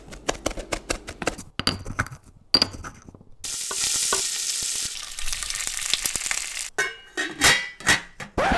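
Stirring wassail soup in a pot: a spoon clinks and scrapes against the sides in quick strokes, with a steady sloshing wash in the middle before more clinking resumes.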